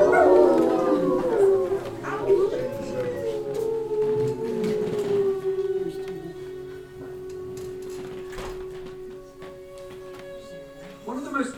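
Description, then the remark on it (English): Long, drawn-out howling from a video being played, with several overlapping voices, rising and sliding in pitch before settling into steady held tones, fairly loud and continuous for the whole stretch. “And you all can howl if you want.”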